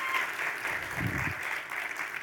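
An audience claps steadily for about two seconds, a dense, even patter of many hands with a brief low rumble of crowd noise partway through.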